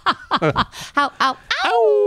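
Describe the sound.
A person imitates a howl on a full moon night: a few quick, giggly vocal bursts, then one drawn-out tone that swoops down and holds, like a playful wolf call.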